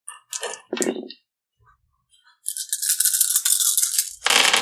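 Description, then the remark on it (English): Dice rattle and clatter in a few quick bursts, go quiet for a moment, then a longer, steady rolling rattle that swells louder at the end, as dice are rolled for a wits plus Tin roll in a game. No one speaks. “Give me a wits plus Tin roll.”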